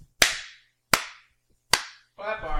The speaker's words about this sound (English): So clap your hands 3 times. It's one of those clap lights.